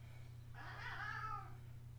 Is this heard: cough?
no